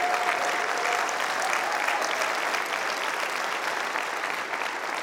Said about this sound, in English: Could you stand up and give him a big hand? And the Hope Homes men could go ahead and stand up and give them a big hand clap.